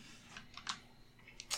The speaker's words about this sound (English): Those were some dice that were just rolled. They certainly were.